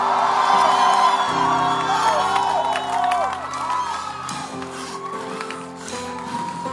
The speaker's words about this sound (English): Can somebody scream?